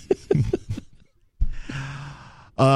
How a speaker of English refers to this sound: when you're moving the mic around, try and hit the cough button.